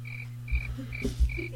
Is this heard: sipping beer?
no